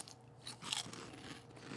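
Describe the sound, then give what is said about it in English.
Crisp crunching of a black sea salt potato chip fried in avocado oil being bitten and chewed, a burst of brittle crackles that peaks early, then settles into softer, irregular chewing with no talking. “This is a black sea salt potato chip with fried in avocado oil.”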